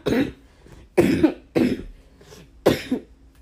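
Four harsh coughs come in quick succession, each a loud burst roughly half a second apart, with no talking in between.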